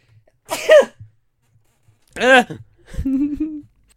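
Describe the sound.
A short series of sneezes, three separate bursts over a few seconds with pauses between them, fairly loud, the first two sharp and voiced, the last one more drawn-out.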